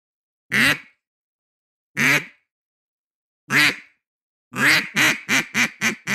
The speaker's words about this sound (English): There's a cadence, yeah. Okay, here it is. I'm going to start off with a quack, okay?